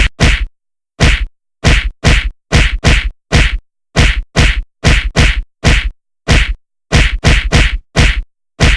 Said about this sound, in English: I'm going to bang my head on the desk for a minute.